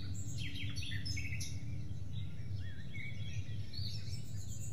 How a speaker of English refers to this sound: You recognize the song of the birds.